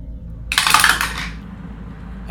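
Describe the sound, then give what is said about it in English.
Dice for a stealth roll in a game clatter and tumble across a hard tabletop in a quick burst of bright, rattling clicks that settles after about a second, over a low steady background hum. “I'm going to do a stealth roll.”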